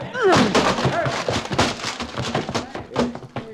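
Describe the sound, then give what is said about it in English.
The door to a private office that is on fire is bashed down with a rapid series of heavy, loud thuds and cracking blows, while voices shout over the din. “Bust that door down.”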